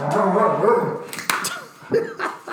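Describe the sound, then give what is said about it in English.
Several dogs bark and yip excitedly in a continuous burst, sharp barks overlapping with higher whiny yelps and no clear pauses between them. “We got the dogs going wild in here again.”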